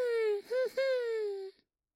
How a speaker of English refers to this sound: And as they get closer to the entrance to the mine, they hear a the whining of a puppy. They have to continue their job, but over time, this light kept reappearing in the mouth of the mine with the sound of a puppy whining.